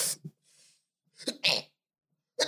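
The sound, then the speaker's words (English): A full, unrestrained sneeze bursts out after a hit of a cannabis blunt, with a sharp inhale and a loud explosive release, followed by heavy breathy exhales. Nobody speaks. “Nah, real sneeze, not a trying to keep it in.”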